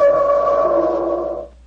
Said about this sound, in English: The instrument sounds exactly like an elephant trumpeting.